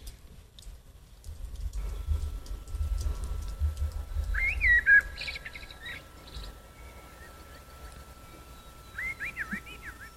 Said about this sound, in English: You hear birds.